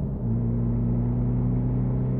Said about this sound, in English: you're driving so fast.